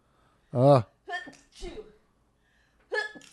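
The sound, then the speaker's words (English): A loud sneeze with a strong voiced burst, followed by a few shorter breathy, snuffling noises and a brief pause before one more small vocal sound. “What a Canadian sneeze.”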